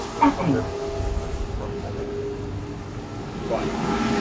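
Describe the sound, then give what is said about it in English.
A London Underground Central Line train idles at a platform with a steady low rumble and a droning electrical hum, moderately loud, while brief bits of voice come and go over it. “This is a Central Line train.”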